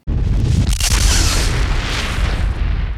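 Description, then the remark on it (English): A loud, sustained roar of massive atomic explosions from several nuclear missiles fired at a base, deep rumbling booms blending into one continuous blast that fills all three seconds with no voices. “Several nuclear missiles were fired at the base, finally destroying it in a barrage of atomic explosions.”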